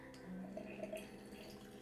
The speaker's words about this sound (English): I have my water all heated up. And I'm going to fill my glass pitcher with some water. We're at 200 degrees Fahrenheit right now, which might be a little hot.